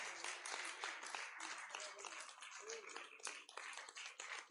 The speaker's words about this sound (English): Let's give Jesus a hand clap of praise.